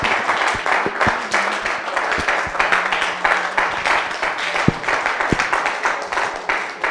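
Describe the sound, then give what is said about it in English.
An audience claps together in a dense, steady patter of many hands, sustained and fairly loud for the whole stretch, with no speaking voice standing out above the applause. “Some of you are not clapping because you don't like my message.”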